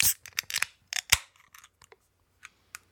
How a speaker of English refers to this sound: Well, until then, we got to crack these beers open and drink them. So let's roll. Let's do it. Here we go. 3, 2, 1, crack.